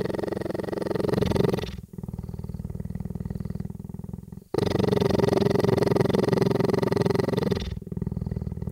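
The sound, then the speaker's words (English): A large cheetah weighing about 180 pounds purrs in a deep, rumbling cycle, alternating long loud inhale and exhale phases with brief pauses between, continuous with no voices. “I recorded the cheetah, the huge and very kind cheetah cane.”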